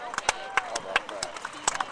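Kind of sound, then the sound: animal, horses hooves clip-clopping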